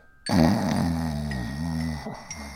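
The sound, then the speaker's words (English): A man, a dad sleeping in his favourite armchair, lets out a single long, rumbling snore lasting about two seconds, loud, with a slight wavering pitch before it trails off. “She quietly tiptoed past her dad, who was sleeping and snoring in his favourite armchair just inside the lounge door.”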